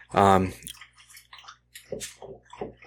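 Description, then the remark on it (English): A dog laps water from its water bowl, giving quick, irregular wet slurps and splashy clicks after a brief voiced sound at the start. “Sorry, I'm set up beside the water bowl for the dog.”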